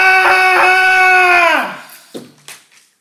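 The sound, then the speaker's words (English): A person being grabbed and dragged away through a door lets out a loud, sustained high-pitched scream of terror that holds steady for over a second, then trails off with a falling wail, followed by two short gasping cries. “screaming in terror.”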